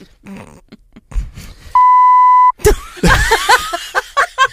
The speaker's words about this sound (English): The beep. What was behind the beep?